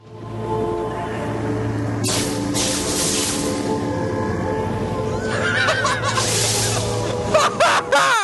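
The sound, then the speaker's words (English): A long, low, rumbling belch, someone burping into the microphone at the opening of Duncan's quickening scene in a film, drones on for several seconds, steady and loud, with a rough voiced buzz and some higher squeaky warbles toward the end. “So yeah, that is definitely a belch.”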